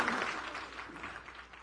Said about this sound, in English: and that's awesome, and that's worthy of applause as well.